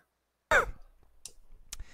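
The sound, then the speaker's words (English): A single sharp, loud cough bursts out after a moment of silence, followed by a couple of faint, breathy rasps and soft hissing sounds. “I'm coughing on this concept of narc.”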